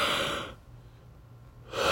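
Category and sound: human body sound, yawn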